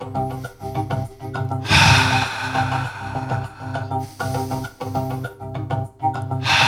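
A slow, deep breath drawn in and let out during a guided breathing exercise, hands raised on the inhale and lowered on the exhale, a long airy rush rising and fading, over steady soft background music with no talking.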